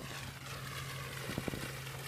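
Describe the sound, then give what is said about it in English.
Garden fountains in a water feature with a small bridge in the middle of a village spray jets of water in a steady, even hiss, with a low hum underneath and a few soft knocks near the end. No one speaks. “There they are, the fountains, shooting out jets of water.”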